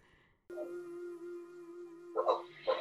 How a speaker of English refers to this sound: And you'll hear some background noise, just a heads up, in this recording. And it is a dog. So apparently the dog really wanted to be in on the session.